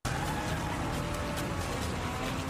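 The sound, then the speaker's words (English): A drifting car, with a person riding on top, roars loudly and steadily, its engine and tire noise blending into a dense, continuous rush with faint squealing edges, and no voices. “what it feels like to be on top of this drifting car”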